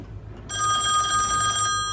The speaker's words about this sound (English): It's him. He can make phones ring, he can.